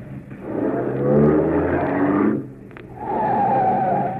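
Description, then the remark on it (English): A car engine roars, then drops briefly before tires screech in a sustained squeal as the car pulls up beside a man. No one speaks. “Pull up beside him, quick.”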